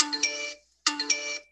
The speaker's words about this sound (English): The smoke detector went off because they know what's up.